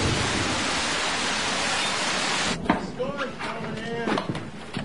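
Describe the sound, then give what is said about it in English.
A loud, steady hiss of thunderstorm rain pours for a few seconds, then cuts away as a voice starts talking over a quieter background. “We'll have to hide in the storm cellar”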